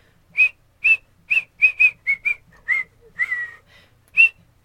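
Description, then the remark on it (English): A person whistles a song melody in a series of clear, short notes around a steady pitch, with a longer sliding note near the end, alone without talking. “Okay, I'm gonna pray while you whistle.”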